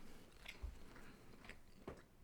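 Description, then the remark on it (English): Quiet mouth noises of someone chewing food, with a few soft wet clicks and crunchy bites scattered irregularly over a faint background. “Well, I'm chewing my food.”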